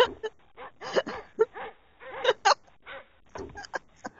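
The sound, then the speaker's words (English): A person imitates a tame dog with a run of short yips and whiny barks, coming in quick irregular bursts with brief pauses between them. “Tame dog.”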